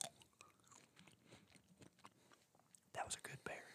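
Chewing of a blueberry right against the microphone, with wet, squishy mouth sounds and a few crisp bites, growing louder and busier toward the end.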